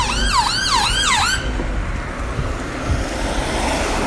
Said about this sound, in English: Just had an ambulance come past with full sirens on. Again, that isn't something I normally see around here.